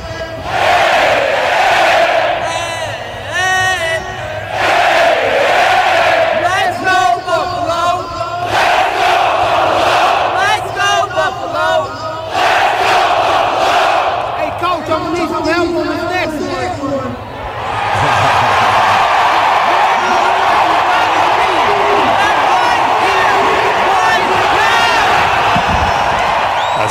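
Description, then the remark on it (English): A big football crowd at a Sunday game chants and yells in unison, the massed voices echoing loudly and continuously, dipping briefly before swelling into a broader, sustained roar. “Not only that, but the echo is crazy.”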